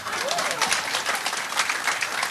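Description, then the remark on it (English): An audience applauds steadily, many hands clapping in a dense, continuous patter at an even, moderate loudness throughout, with a faint murmur of voices mixed in. “I thought I'd get applause for that, man.”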